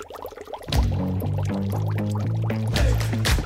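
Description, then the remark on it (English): Dry ice sublimates in water in Paya Ubi Industrial Park, home to several ice companies: a steady churn of bubbling and gurgling with hollow, pitch-shifting burbles that rise and fall over a few seconds, no voices present. “You've been hearing dry ice sublimating in water.”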